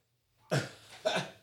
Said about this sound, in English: The dogs agree. What the fuck are they barking at? Oh, somebody at the door.